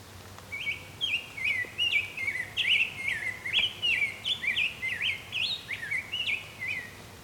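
A rose-breasted grosbeak sings a long, continuous run of sweet, rich warbled whistles, rising and falling quickly at a fairly high pitch for about six seconds, clear over a faint low hum.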